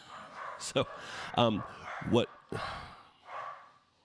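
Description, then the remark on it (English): A few sharp barks from two dogs upstairs in a house come in irregular bursts, fairly loud, over a low background murmur, with a short gap between them and a muffled rustle near the end. “They always bark at the delivery people.”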